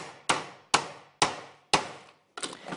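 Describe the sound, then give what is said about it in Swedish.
A hammer strikes repeatedly while something is being built, five sharp blows about half a second apart, each ringing briefly before the next; no one speaks. “Och vad är det du bygger för något? Oj, en hammare och jag.”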